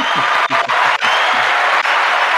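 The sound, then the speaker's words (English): A dense burst of crowd applause, played as a sound drop honoring Tom Brady's retirement after 22 seasons, plays loudly and steadily for a couple of seconds, many hands clapping at once with some faint cheering mixed in. “Go ahead and give him the claps”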